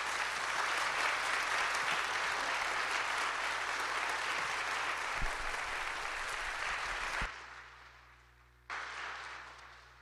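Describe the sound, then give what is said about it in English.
A church audience applauds steadily to honor the church's elders, a dense, sustained wash of clapping that stays loud for about seven seconds, then drops sharply and fades into a quieter tail. “So I don't know what a double honor round of applause looks like, but would you show our elders some honor right now?”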